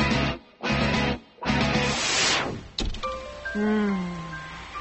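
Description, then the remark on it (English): Steady hissing rain comes in a few loud, broad washes, then thins out as soft high-pitched chirping calls rise and fall over a quieter patter. “I love the sound of the rain.”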